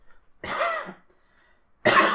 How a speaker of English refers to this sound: I'm going to cough real quick.